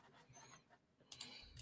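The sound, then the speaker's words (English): A few sharp keyboard clicks land in quick succession after a stretch of near-silence, like someone tapping at computer keys in short bursts. “Oh, my keyboard is not working.”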